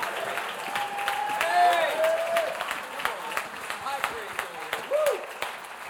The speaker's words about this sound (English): Come on, if you receive that, clap your hands one more time. Give the Lord a great shout of praise.